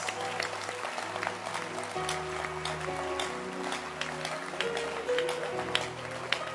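An audience claps its hands in a steady, dense burst of applause lasting several seconds, with sustained keyboard or organ chords playing underneath and no one speaking.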